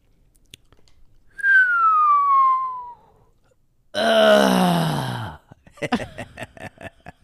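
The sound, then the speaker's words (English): A voice imitates a descending whistle, then a rough guttural growl, followed by a few short, breathy chuckles in quick bursts, all fairly loud with brief pauses between. “It was a whistle followed by a guttural growl, and then just some chuckling.”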